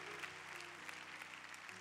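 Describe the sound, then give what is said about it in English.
A crowd claps steadily to praise God at a church gathering, a dense, continuous patter of many hands with a low sustained tone humming beneath it. “So let's clap our hands and praise God for our great church.”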